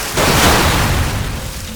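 A sudden, loud explosion from across the divide of an interstate, heard from a car driving down it with the driver's side window open, bursts in with a deep, rumbling boom, then rolls on as a broad, roaring wash of noise that stays heavy for over a second.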